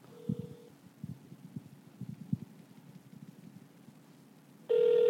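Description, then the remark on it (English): Phone ringback tone heard over a call line as someone calls their mother: a short steady tone, then a stretch of low muffled thumps and rustling, then the tone returns loud and clear at the end. “See if y'all can hear it. Hold on.”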